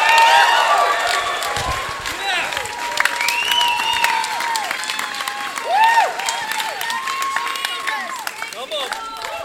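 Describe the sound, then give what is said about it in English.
A crowd bursts into sustained applause on a count of three for a stage introduction of 'Lord Jesus Christ', dense clapping mixed with whoops and cheers that stays loud for about eight seconds before starting to thin out. “I bet if a movie star walked in here, we clap longer for them.”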